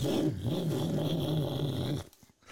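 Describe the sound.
A person imitates a big V8 engine roar with a loud, gravelly, low rumbling voice that holds steady for about two seconds, wavering slightly in pitch before cutting off abruptly.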